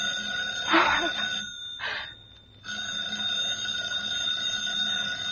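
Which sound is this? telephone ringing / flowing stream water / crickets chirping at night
telephone ringing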